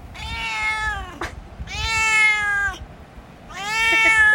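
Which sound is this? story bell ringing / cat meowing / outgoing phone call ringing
cat meowing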